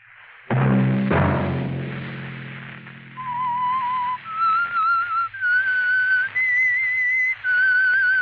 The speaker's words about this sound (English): That whistle be your signal for the Signal Oil program, The Whistler, each Sunday night at this same time